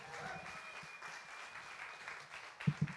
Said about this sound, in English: Big round of applause